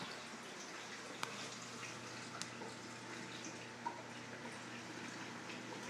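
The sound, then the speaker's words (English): Water pours down in a steady, continuous rush, broad and hissing, with a few brief clicks or drips breaking through. No one speaks. “Pretty sure water is coming down.”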